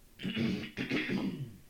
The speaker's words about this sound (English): And then I get self-conscious about the scratchies in my voice, and so that's why I have to cough.